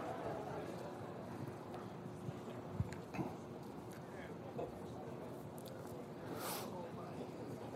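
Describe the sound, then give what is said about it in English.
A group of people groans and murmurs together after being asked to write their signatures with their other hand, a steady, muffled rumble of many voices lasting several seconds, with a few brief louder bumps and no clear words. “Listen to the groaning.”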